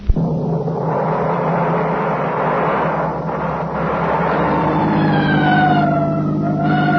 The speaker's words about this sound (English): Well, why the siren? The only traffic out here is on horseback.